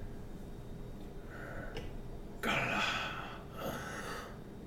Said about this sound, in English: Shakes her head, breathing heavily, and says,